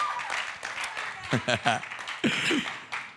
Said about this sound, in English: Look at your neighbor, say, neighbor, these young people did a good job. So give them a round of applause as they find their seat.